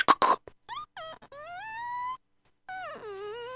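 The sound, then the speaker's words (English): A door creaks open: a couple of sharp clicks, then long, strained squeals that bend upward in pitch, a short pause, and one more drawn-out, wavering creak that sinks lower. “Well, even the door is hoarse.”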